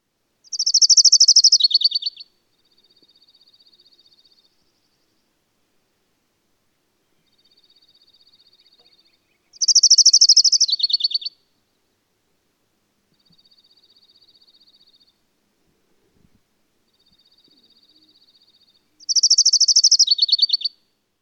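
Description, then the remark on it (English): A high, sweet trill from an orange-crowned warbler repeats three times about ten seconds apart, each a quick run of notes that dips slightly in pitch near the end, with a faint thin buzz between songs. “So let's move on to our last triller, the orange-crowned warbler. Orange-crowned warbler trill consists of sweet, clear notes.”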